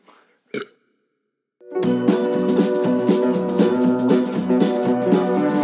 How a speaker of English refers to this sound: Cheers, folks. Yeah, there's a burp coming in. That's good.